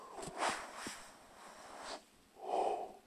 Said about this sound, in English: Oh my gosh, maybe I should record these earlier because I cannot stop yawning.